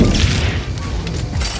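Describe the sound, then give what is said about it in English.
A gas canister explosion in a video game: a loud, bass-heavy rumbling blast with crackling, shattering debris that holds steady for under two seconds, with no talking. “I figured that if I waited around long enough, some of these bozos would walk past one of them whilst punching a durry and end up blowing himself up in the process.”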